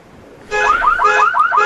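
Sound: car alarm going off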